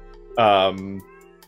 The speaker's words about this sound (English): Do you hear my cat?